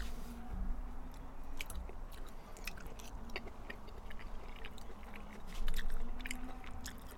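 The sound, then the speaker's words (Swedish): Wet, squishy chewing and biting of Eldorado pimento olives from the largest jar, with irregular soft crunches and clicks over a low background hum, no talking. “Men det här är med pimento, va?”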